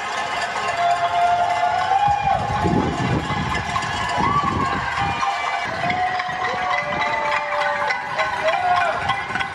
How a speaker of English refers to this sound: And citizens of New York City would go to the windows of their apartments and bang on pots and pans and cheer to show their support, primarily for healthcare workers on the front lines helping COVID patients.